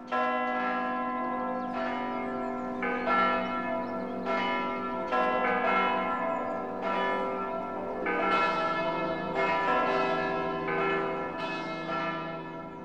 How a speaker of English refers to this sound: Münster is a town where you often hear a chorus of church bells.